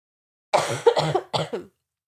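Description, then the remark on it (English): A person coughs several times in quick bursts after getting heated while talking, fairly loud, with a brief pause before the last two rougher coughs; no talking. “So let me just cough here for a second.”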